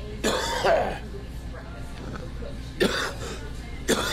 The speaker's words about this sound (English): A smattering of chuckles accompanied my cough, which sounded even phlegmier than it felt at the back of my throat. I had some kind of bug that I couldn't shake. My lungs felt like I was breathing through pudding.